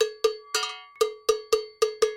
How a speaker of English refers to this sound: See, the bell is complete. Now all you have to do is weld it. Now, this type of bell, they come in different, like high pitch, medium pitch, low pitch. You can hear how low this is.